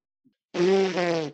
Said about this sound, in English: That's definitely a stir fry fart, a dry one.